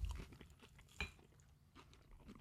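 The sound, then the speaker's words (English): Someone chews a sweet pickle bite dipped in ketchup near the microphone, with wet, irregular crunches and a sharper bite near the middle. No one speaks. “I can totally hear you chewing.”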